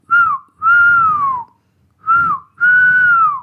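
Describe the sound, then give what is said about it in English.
A person whistles a short tune in four clear phrases, each a sliding tone that falls at the end, with brief pauses between and a soft breathy undertone. “Meanwhile, Bingo flew high and whistled.”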